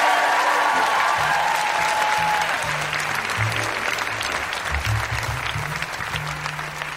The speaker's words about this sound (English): Let's have a round of applause for ….